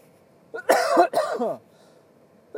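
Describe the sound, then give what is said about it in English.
A harsh burst of coughing as nicotine kicks in: two or three hacking coughs in quick succession, fairly loud, followed by a brief quiet and the start of another. “when the nicotine kicks in, holy fuck, it'll make you cough a little bit.”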